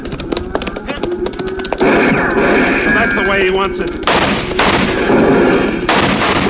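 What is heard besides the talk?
gunfire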